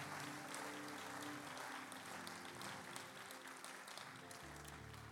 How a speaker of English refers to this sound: Join the left one. Put the two together and clap for Jesus. Hallelujah.